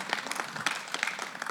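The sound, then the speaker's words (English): An audience applauds the people who came second, a dense wash of many overlapping hand claps at moderate volume with no voices, sustained throughout. “Well, please give them a healthy round of applause there.”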